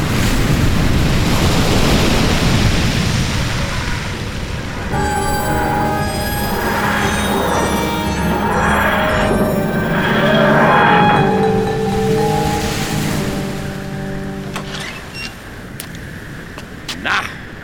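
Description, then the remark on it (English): A loud, continuous roar of ocean surf on an ocean world, waves rolling and crashing below, joined partway through by sustained tonal notes layered over the rushing water before it settles back to surf alone. “This is an ocean world. Just think of the water bill. Look at those waves below.”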